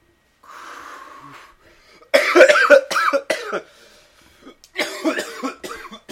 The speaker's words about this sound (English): We had a little moment of silence there before an explosive cough.